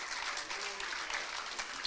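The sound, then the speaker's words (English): A crowd claps their hands in praise to the Lord in a steady, dense wash of applause, many overlapping hand claps blending into a continuous crackling roar with no voices standing out. “Would you clap your hands to the Lord one more time and give him praise?”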